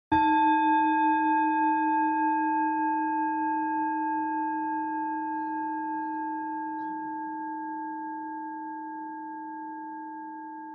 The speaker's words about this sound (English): So I'm going to ring the bell, and we'll start by just getting grounded, listening to the bell from the beginning to the end.